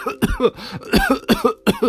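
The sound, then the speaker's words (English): Several small coughs in quick succession, about five short bursts spread over two seconds, moderately loud, with no talking around them, as the characters Bramwell Brown, Duck and Rabbit run into a room. “Before Old Bear could answer, Bramwell Brown, Duck and Rabbit ran into the room, but they were all coughing a little bit.”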